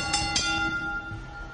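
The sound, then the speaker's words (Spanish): A boxing ring bell is struck twice in quick succession before the fight's verdict is announced, then its bright metallic tone rings on and slowly fades. It is fairly loud, with no voices. “Señores, por favor, una campana porque se viene el fallo de la pelea.”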